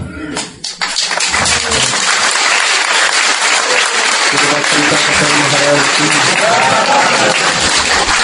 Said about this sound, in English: Clapping also.